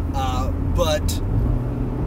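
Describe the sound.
Steady, loud low rumble of an unheated car driving over a terrible rough road around midday on a Sunday as it begins to snow, 39 degrees, heard from inside the vehicle, with a couple of brief voice-like sounds rising over the constant road noise.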